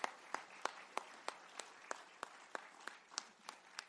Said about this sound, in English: So you need to give Jesus a round of applause and also yourself.